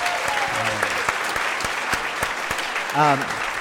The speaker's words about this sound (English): And we just want to give him a round of applause.